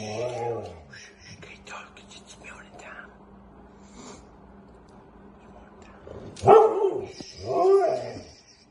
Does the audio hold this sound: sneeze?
no